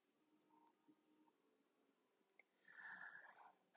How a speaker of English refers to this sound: Y'all, I'm sorry. I just had to sneeze. Horrible. Sorry.